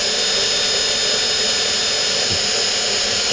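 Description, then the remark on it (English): A power drill runs continuously at a steady, loud high-pitched whine for the whole few seconds, with no voices over it. “You know, I did just get my first drill last year.”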